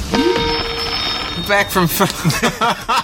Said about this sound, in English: back from the phone's ringing. It's me.